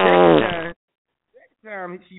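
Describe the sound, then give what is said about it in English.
A voice makes a loud, buzzy raspberry imitating passing gas, then, after a short pause, a second shorter, wavering one, with no other talking. “First time he farted, she elbowed him.”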